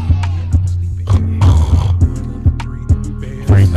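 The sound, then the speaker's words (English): A loud snore, a rumbling throaty drone broken by repeated sputtering, snorting bursts at an irregular rhythm, with no other sounds around it. “Sleeping in it. Snore, bitch.”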